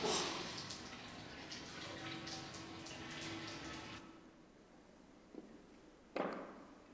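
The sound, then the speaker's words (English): A steady, hissing rush of shower water runs, then cuts off abruptly after an Alexa voice command, leaving quiet with a couple of sharp clicks or knocks afterward. “Alexa, turn off shower.”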